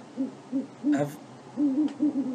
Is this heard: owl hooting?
yes